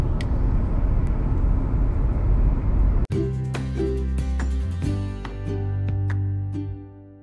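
Steady, loud low rumble of a car's interior while driving on a commute to work fills the first few seconds, then a cut brings in tonal music playing over a quieter hum.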